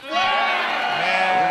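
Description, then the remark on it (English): A single loud sheep bleat, one sustained wavering cry lasting over a second, with no talking. “One day, he and the other shepherds took the sheep to drink water, but a crowd of mean Lamanites came and scattered the sheep.”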